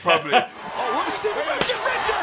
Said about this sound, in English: Stevie Richards chair shot.